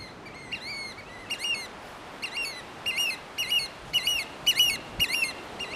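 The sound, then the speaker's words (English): Shrill, piercing calls of an oystercatcher, a fully black bird with a long orange bill and pinkish legs, repeat in a rapid series of sharp, high piping notes, growing louder and more insistent over a steady background hiss, with no voices. “The oyster catchers are fully black with a long orange bill and pinkish legs, and they make this call.”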